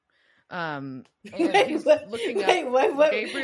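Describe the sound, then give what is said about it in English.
A person imitates keyboard typing with their voice to represent someone doing research: a short drawn-out vocal sound, then a quick, rapid run of clicky, chattering mouth noises, fairly loud. “Oh, that's your typing noise.”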